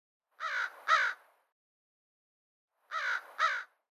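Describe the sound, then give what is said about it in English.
An American crow perching nearby caws in two quick doubled bursts, a pair of harsh calls, a pause of a couple seconds, then another pair, with no other sounds. “Another crow is perching nearby, calling occasionally.”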